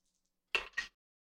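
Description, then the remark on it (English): A set of dice rattles and clatters across a hard surface in two quick bursts, fairly sharp, then silence follows; one set of dice is rolled for an agility check in a game. “Okay, so this is normal, so I'm just going to roll one set of dice.”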